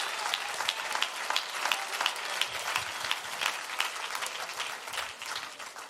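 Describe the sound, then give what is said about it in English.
An audience claps their hands to the Lord, a dense, steady patter of many overlapping claps with a faint rhythmic pulse, sustained at an even level throughout and with no voices on top. “Why don't you clap your hands to the Lord just to open your heart to him?”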